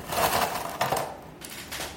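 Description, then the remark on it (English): Ice cubes tumble into a glass while making a Negroni, several quick clinks and rattles at irregular intervals, moderately loud with no voices. “So I just have this glass with ice.”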